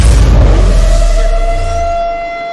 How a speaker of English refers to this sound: Oh, baby, you ready? Hit that air raid siren. Time for Monday Morning Fallout.